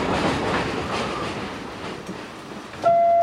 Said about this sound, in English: Ooh, train's here. Just missed it. It's 8:03. The train is rolling in.